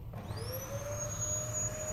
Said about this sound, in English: And beeps.